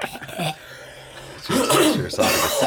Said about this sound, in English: There we go. Well, let me cough, too. That's the beauty of this. I can cut it. When you cough, I cough. I can cut it.